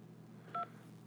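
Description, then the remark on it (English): A single short telephone keypad tone as a key is pressed in reply to a car warranty robocall, a clear two-pitch DTMF beep lasting about a tenth of a second, sounding alone over a low steady hum. “I meant to hit 1 so I could have a discussion, maybe even renew my warranty, which is nowhere near expiring.”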